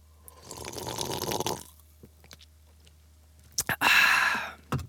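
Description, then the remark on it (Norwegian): A cola can fizzes with a crackling carbonated hiss as it is opened and drunk, falls quiet except for a few small clicks and sips, then a sharp snap releases another loud burst of fizz. “Jeg skal bare poppe den her, jeg. Ja, det ikke Monster, det en cola, faktisk.”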